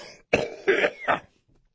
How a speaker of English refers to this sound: Yes, all right, I had to cough.